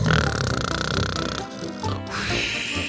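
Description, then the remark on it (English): A person imitates loud snoring with a rough, throaty rattle that swells and fades, breaks off briefly, then rumbles on in another drawn-out breath. “Ooh, I fell asleep there for a second.”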